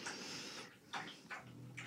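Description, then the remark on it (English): A dog laps water loudly, with wet, splashy slurps repeating in a quick, steady rhythm. No one speaks. “Hold on, my dog's lapping water loudly.”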